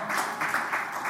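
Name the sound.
audience clapping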